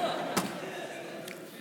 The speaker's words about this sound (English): You have no idea how excited I was to kick that thing off the hinges. It's what I get for asking a really, really good builder to create a door for me.